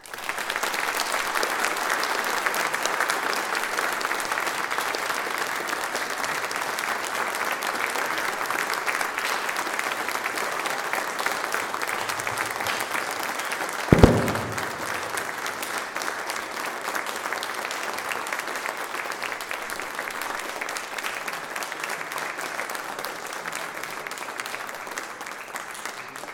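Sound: church audience applause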